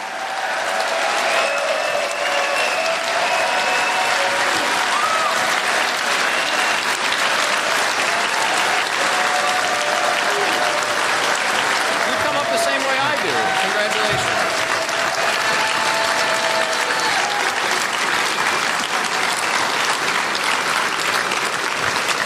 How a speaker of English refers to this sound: Everyone, please stand and give a round of applause for the nominee for President of the United States, Governor Gary Johnson.